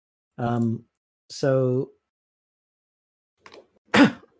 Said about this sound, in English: Sorry. I think I've picked up your cough